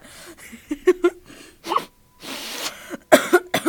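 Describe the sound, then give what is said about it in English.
A deliberate, forced cough made up of several short, sharp bursts, with brief breathy pauses in between and no talking. “That was a fake cough.”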